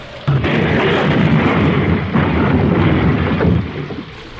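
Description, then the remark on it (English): An airplane in a spinning nosedive crashes: a loud, continuous roaring rumble bursts in suddenly and surges for about four seconds before trailing off. No one speaks. “The plane has crashed.”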